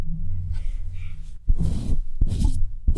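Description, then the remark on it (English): A female dog sniffs right at the microphone: a low rumbling huff, then two sharp, noisy bursts of breath with airy hiss, loud and close-miked, no talking. “Now she's here sniffing the microphone.”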